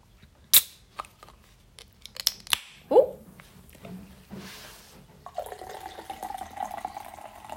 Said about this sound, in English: A nice pour, if I do say so myself.